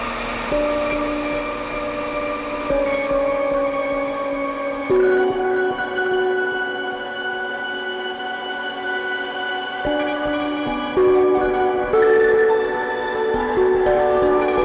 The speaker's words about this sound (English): If you crank the regen on the Desmodus, it will feedback, obviously, but if you crank it all the way up, it will duck whenever there's sound at the input. So let's hear what that sounds like with the steel drum.